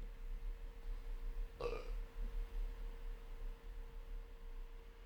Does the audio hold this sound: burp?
yes